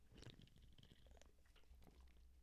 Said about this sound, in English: got the beer of the week here, so I'm going to take a little sip and try it.